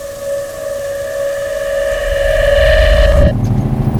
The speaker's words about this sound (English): Can we turn this thing down? What's that? I didn't realize trash trucks were so loud. Technically, it's just a dump truck.